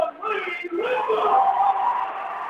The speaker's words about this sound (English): It was exciting when they came out on the floor to begin their warm-ups. The light kind of dimmed, and they're fired up. And now you hear the crowd roar for them Wildcats here tonight.